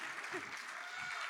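A church audience breaks into steady applause for a young woman at the front, a dense and even wash of many hands clapping that holds for the whole moment, with faint voices mixed underneath.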